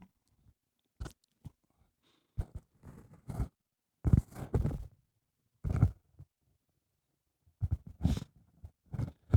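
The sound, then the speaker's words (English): Someone blows their nose: scattered short, wet snuffles and clicks, then two loud, rough blasts of air through the nose in the middle, followed by a few softer sniffs and rustles. “Sorry about that. Blow my nose, I think I got the fucking COVID.”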